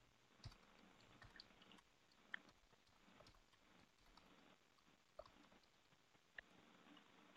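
Irregular clicks of typing on a computer keyboard, clattering in uneven bursts with a few sharper, louder keystrokes standing out against quiet background hiss. No one speaks.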